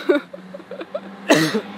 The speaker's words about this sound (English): See, that's that cough again.